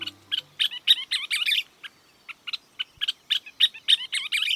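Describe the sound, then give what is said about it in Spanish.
A scissor-tailed flycatcher gives rapid, chattering calls, bursts of sharp high notes in quick irregular series, clear with no voices. “Esta es una de las aves más difíciles de olvidar de Estados Unidos, una tijereta rosada.”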